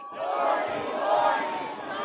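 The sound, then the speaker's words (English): A large outdoor crowd, gathered early in pitch-black darkness waiting for a rodent, roars and shouts together in a sustained, steady wave of cheering, dense and loud throughout with no single voice standing out. “Early crowd, let me hear you.”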